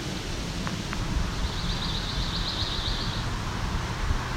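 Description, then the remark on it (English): A pine warbler sings one steady, even trill of rapid high notes, swelling slightly in the middle before fading, heard faintly over a constant hiss of background noise. “I believe we have a pine warbler.”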